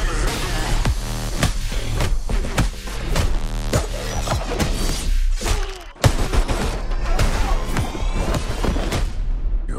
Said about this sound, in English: So how about we all just start shooting each other? Time to end this.